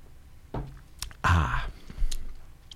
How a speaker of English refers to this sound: All separate, which is good in this case because then I can have a sip of Molson Golden because I'm talking a lot.